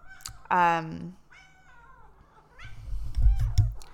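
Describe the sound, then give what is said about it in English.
A cat named Grim meows loudly, one long drawn-out cry followed by softer, shorter mewing, with low rumbling handling noise near the end. “First, we're going to give Grim some pets because she's a very needy cat.”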